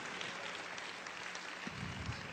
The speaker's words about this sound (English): Come on, give the Lord a big clap offering. Worship team, would you help me out for again? Give the Lord a big clap. Come on, give the Lord a big praise.